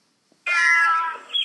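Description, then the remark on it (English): A single long, drawn-out cat meow, fairly loud, with a slight upward twist at the end, standing alone with no talking around it. “I think when the new owners of that building came in and they were moving in, they were having, you know, they were having a little bit of trouble with the cats.”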